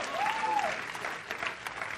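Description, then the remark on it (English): An audience claps together in a dense, steady burst of applause lasting two seconds, with a brief tonal rising-and-falling sweep cutting through the clapping near the start. “Come on, somebody ought to clap on that one.”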